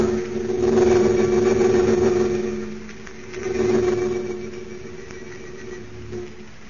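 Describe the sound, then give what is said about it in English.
Engines of a converted army bomber drone steadily in flight high above a dark layer of storm clouds, heading toward the American border: a low, throbbing hum with a strong tonal whine that swells louder twice and eases back between. No voices are heard. “High above a dark layer of storm clouds, a converted army bomber streaks in the direction of the American border.”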